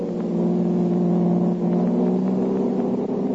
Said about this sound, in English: Jumping into his own car, the Blue Beetle gave chase until out on the river road.